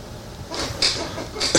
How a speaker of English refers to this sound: I wonder how much of my squeaky chair is getting through the audio here. Plenty. Yeah, you can hear that? Oh, it's amazing.